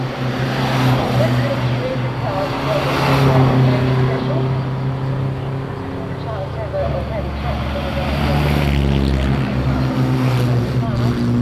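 Powerful exotic car engines rumble and rev at a car event, a loud, steady drone whose pitch rises and falls over the whole stretch, with muffled crowd noise mixed underneath.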